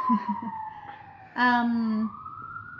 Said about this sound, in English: Other than that, here is the first siren of the episode.